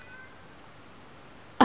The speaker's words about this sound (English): my cat is crying.